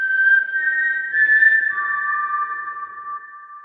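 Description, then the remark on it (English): A short four-note whistled signal tune, the Hunger Games whistle, clear, with the notes stepping around before settling on a lower final tone held for a couple of seconds, no talking. “Yeah, we should blow the Hunger Games whistle for the Cardinals.”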